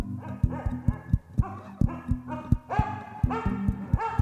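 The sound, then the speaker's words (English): Dogs bark in a rapid, overlapping series of sharp yaps and woofs, fairly loud, with quick rhythmic knocking sounds underneath and no talking. “You have to stay away from the houses because the dogs will bark and that will warn the migra.”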